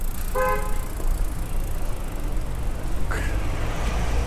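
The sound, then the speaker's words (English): Steady rumble of road traffic at a crossroads with cars passing by, a short car horn toot early on and another brief, sharp vehicle sound a few seconds later. No one speaks. “So I just came up to the crossroads, so it's yeah, I'm not gonna say much at this point. Cars! It's just cars everywhere, isn't it?”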